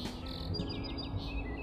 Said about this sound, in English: Oh, you can hear the morning songbirds. Squeak, squeak of a robin. They sound like a dog's chewy toy, don't they? And then over there, I can't see any of them, but I can hear them yodeling over there.